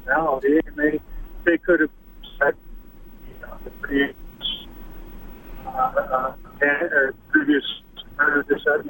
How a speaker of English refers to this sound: your phone's breaking up a little bit. I'm having troubles hearing you. Are you there? Yeah, but I'm having troubles hearing what you're saying.